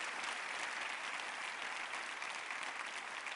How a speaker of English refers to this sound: Everybody give her a hand, amen. God bless you.